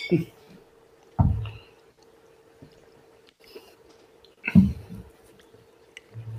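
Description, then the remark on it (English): Drinking sounds: a few short knocks of glasses clinking in a toast, followed by wet sips and gulps of SoCo, with a faint steady hum underneath and no clear talking. “All right, well, hey, man, cheers to you guys. Here's to a good episode.”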